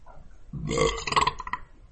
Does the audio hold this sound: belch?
yes